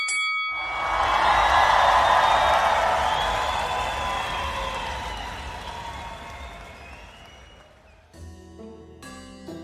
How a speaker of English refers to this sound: It takes quite some time before it rang, but when the bell finally chimed, the crowd began to roar.